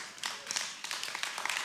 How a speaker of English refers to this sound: You can clap for that. It's real.